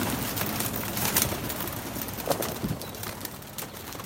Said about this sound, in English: He keeps pigeons on a rather scruffy coop. He allowed me to join him as we went up onto the roof, and he let them out for their twice daily flight.